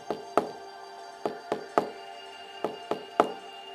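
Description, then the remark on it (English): A woodpecker hammers at a tree, making a hole in it, in sharp, hollow knocks: about eight strikes in uneven clusters of two or three with short pauses between, standing out clearly over a faint steady background. “And the woodpecker didn't seem to mind him being there at all. He just carried on banging.”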